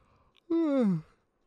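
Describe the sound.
A person's single voiced yawn about half a second long, its pitch sliding steadily downward before trailing off into quiet, with a faint breath just before it.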